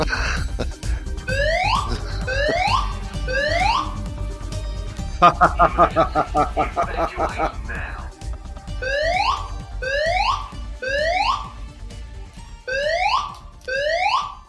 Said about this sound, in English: We've just got a fire alarm. You hear that?